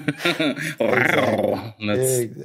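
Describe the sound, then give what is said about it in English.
A man's voice imitates a tiger's growl, a rough, rumbling snarl held for a couple of seconds with a brief break, loud. “You gotta work on your tiger growl a little bit.”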